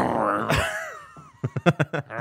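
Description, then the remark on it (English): A person lets out a short growling vocal imitation of a lion roar with a falling pitch, followed by a quick series of rhythmic breathy bursts. “I'm mad you didn't do the lion roar for the beginning of March.”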